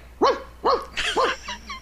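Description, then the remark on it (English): A person imitates a dog with four quick, loud barks in a rapid run, the last one trailing off softer; no other voices or sounds around them. “See, I don't hiccup. I bark.”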